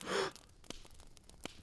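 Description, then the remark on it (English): A single short, loud, breathy gasp at the very start, followed by near-silence with a couple of faint soft clicks. “Just a gasp.”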